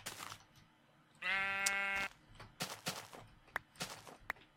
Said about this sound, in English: There's more sheep.